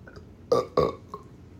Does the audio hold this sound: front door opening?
no